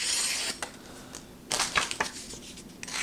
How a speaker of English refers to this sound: All right, so let's do the paper cutting test. So here we go. Yeah, look at that. Easily cuts through the paper.